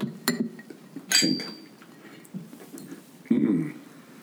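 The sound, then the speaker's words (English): Glasses clink together in a toast, a quick light tap followed by a brighter ringing chime that lingers briefly, with low voices murmuring. “Cheers”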